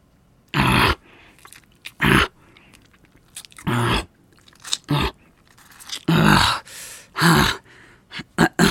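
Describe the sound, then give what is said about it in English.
A werewolf snarls and bites in a rapid series of loud bursts, with crunching chewing and guttural growls coming in irregular bursts and brief pauses between. “there's other things I can do to him besides biting him anyway”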